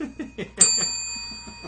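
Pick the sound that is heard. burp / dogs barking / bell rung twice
bell rung twice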